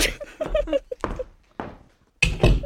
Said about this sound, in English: Resigning from the podcast. Make sure you get me slamming this door.